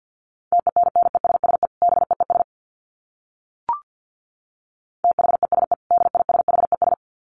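Rapid Morse code dits at 50 words per minute in a steady mid-pitched beeping tone, sent in two fast bursts separated by a few seconds of silence, with a single brief click in the gap.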